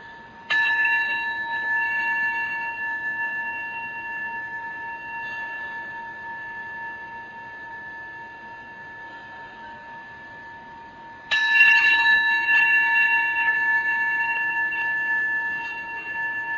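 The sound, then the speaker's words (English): A meditation bell, rung as a meditation object during a meditation, is struck and left to ring out in a long, sustained shimmering tone, then struck again about eleven seconds later, clear with no talking. “And I'm going to ring the bell 3 times. We'll use the sound of the bell as a meditation object.”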